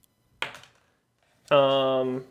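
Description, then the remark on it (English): Dice clatter briefly, a quick rattle of a couple of hard clicks. After a short pause, a voice lets out a sustained, tonal vocal sound. “Let me get my dice. We'll find out if you have keys.”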